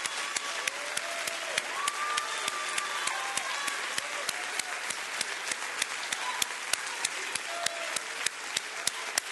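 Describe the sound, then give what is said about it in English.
A church audience applauds the Lord steadily, a dense wash of many hands clapping with sharper individual claps standing out, plus faint whoops and voices rising underneath throughout. “We ought to just clap for the Lord because of what he's done for us.”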